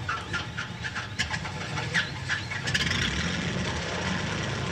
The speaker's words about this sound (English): The pilot starts the engines and takes off.